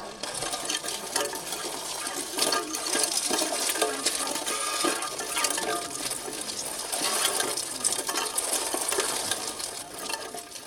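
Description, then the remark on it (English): A bicycle wheel rolling over broken glass: a continuous dense crunching and crackling, bright and gritty, with scattered sharp tinkling clicks running throughout at a steady loudness. No voices. “Well, let's have a little final listen to this terrible, terrible sound of a bicycle wheel on broken glass.”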